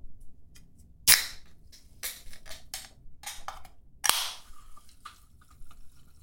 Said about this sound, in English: That is the opening of a PBR can and then being poured into a plastic cup. That's what I think that is. You know what? You're very, very close. It was actually a soda can